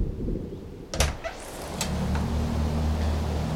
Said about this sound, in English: Let me get the door for you.